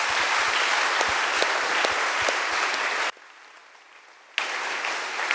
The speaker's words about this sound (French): Applaudis pour le Seigneur. Clap for the Lord.